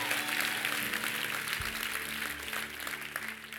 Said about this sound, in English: Before we go, can we give the worship team a big old clap? And then you guys can sit down.